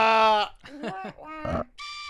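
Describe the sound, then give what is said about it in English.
A train whistle sound effect sounds in short, sustained harmonic blasts, a loud opening tone followed by wavering, voice-like bursts and a final higher-pitched held note. “we'll play this sound again. This there train is losing steam.”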